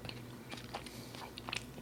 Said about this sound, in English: You're going to have to mute you while you munching. Yeah. We said it was okay to eat the salad. We didn't want to hear you eat the salad